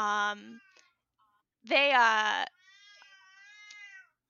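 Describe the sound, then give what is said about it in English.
A female pet cat meows in three separate calls: a short one, a louder drawn-out yowl after a pause, and a softer, higher trailing mew. No one speaks over them. “Oh my gosh, this is my cat.”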